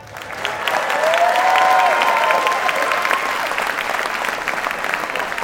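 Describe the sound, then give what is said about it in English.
A large crowd of thousands applauds and cheers loudly, a dense wash of clapping with a few rising whistles or shouts, sustained at a steady level throughout and filling the room. “What a beautiful crowd tonight.”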